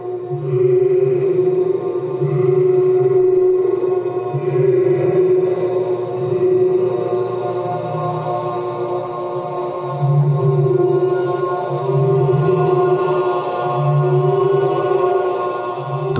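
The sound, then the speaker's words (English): A choir holds long, sustained chords that ring and blend in a chapel, whose resonance amplifies the voices and sings back to them; layered steady pitches swell gently in waves for the whole stretch, with no distinct words. “The room actually then causes that wine glass effect to happen. It amplifies their voices and starts to sing back to them.”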